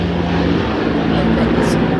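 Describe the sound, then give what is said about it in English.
A helicopter drones steadily overhead, a loud, continuous low rumble with a humming engine tone that holds for the whole two seconds without fading. “Just waiting for the airplane to pass by. It's actually a helicopter, I think.”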